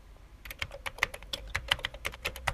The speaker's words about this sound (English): So I start typing